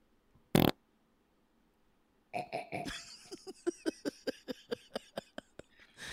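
A cartoonish fart sound effect played from a fart button: a short blast, a brief pause, then a long, loud sputtering run of rapid rhythmic pops that trails off near the end.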